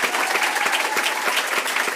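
An audience at a school board meeting claps steadily, a dense patter of many hands at a fairly loud, even level with no voices standing out, giving another round of applause for a woman who is leaving the district.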